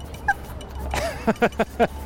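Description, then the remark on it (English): A Patterdale Terrier belonging to writer and comedian Doc Brown, out on a walk, gives a brief high whimper, then lets out four quick, sharp barks in a rapid burst over a low background rumble. “Ben grew up in North London, so he and his adorable Patterdale Terrier”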